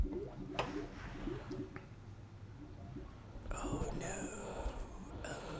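Wet bubbling and gurgling from water in a filling toilet bowl, low and murky at first, then turning brighter and more sputtering halfway through, steady throughout.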